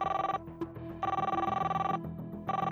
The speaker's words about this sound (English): The phone rang and rang. It felt like tossing a rock into a hole and waiting for it to hit bottom. Finally, the line clicked.